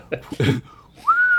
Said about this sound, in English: He whistled.